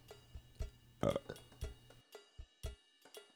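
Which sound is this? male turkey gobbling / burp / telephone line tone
burp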